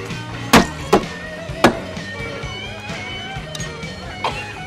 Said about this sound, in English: Here we go. You slam it down, you knock the glass down on the table, all right? One, two, three.